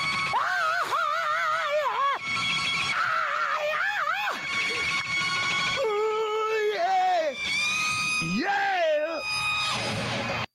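Loud electric guitar soloing with screaming bends and wavering sustained notes, mixed with high whooping yells, running continuously for about ten seconds with brief breaks between phrases.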